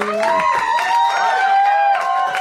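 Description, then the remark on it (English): An audience applauds and cheers in a steady, loud wash of clapping as the mayor of Hermantown, Dan Harmon, is welcomed to the stage, with sustained whistle-like tones ringing over the crowd noise throughout. “Would you please keep those applause going and welcome to the stage the mayor of Hermantown, Dan Harmon.”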